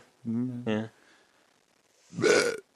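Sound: burp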